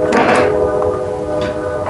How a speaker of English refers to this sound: I just heard a train. I don't know. Are you there? Yeah. You hear the train? Yeah, that's down the road from me. But that's real. That wasn't like fake, was it?